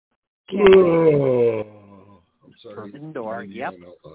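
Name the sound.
big yawn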